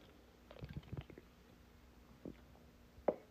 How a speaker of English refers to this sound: Excuse me, I had to take a drink of water there.